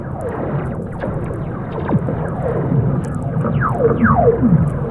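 A long Teleferica cable in Italy, like a ski-lift cable, recorded by sound artist Jez Riley French, sings with eerie descending sweeps, pitches sliding downward over and over like sci-fi laser zaps, layered over a steady low rumbling drone.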